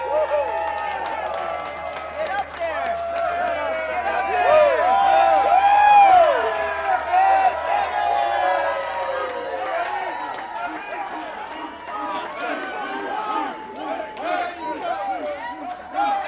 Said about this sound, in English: Yeah, do you hear them chanting for me? They need another one. They do.